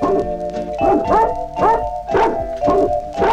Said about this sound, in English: This is how I'm going to get people to leave right tonight. When the dogs come on, you know, it's time to go home.